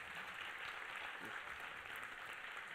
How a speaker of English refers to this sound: And I think he deserves an applause, right?